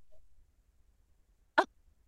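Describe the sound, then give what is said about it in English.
A single short, loud fart sound effect, played by a Google smart speaker on a voice command, pops out of near silence, a quick buzzy burst lasting only a fraction of a second, with nothing else around it. “Okay, Google, make more fart sounds.”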